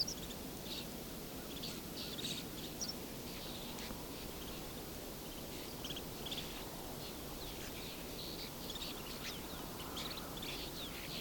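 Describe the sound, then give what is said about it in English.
A flock of snow buntings and horned larks, just spooked and flying up and around, gives many short, buzzy calls, overlapping and scattered throughout, high-pitched and fairly faint over a steady background hiss, with no talking. “Lots of little buzz sounds.”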